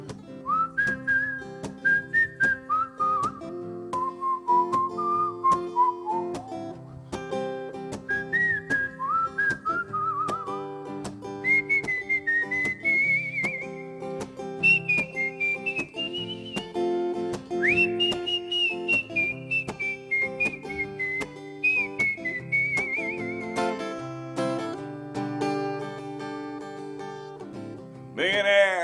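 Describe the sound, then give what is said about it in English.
Someone whistles a wandering, tuneful melody, rising and falling in smooth phrases, over a steady backing of plucked or strummed accompaniment that keeps a regular rhythm throughout. “I'm gonna try to whistle this one.”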